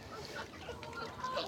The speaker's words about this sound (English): Wow. Look at all the geese.